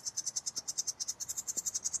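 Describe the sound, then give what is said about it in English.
A bird calls in a fast, steady run of high-pitched chirps, roughly ten per second, continuing unbroken and fairly loud with no voices over it. “There's a bird here. He's very chatty.”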